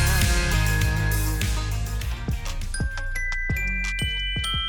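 Bright jingling bells ring out over a full, steady music bed, with sharp chiming accents landing in a regular rhythm as a song's intro plays loudly, no voices present.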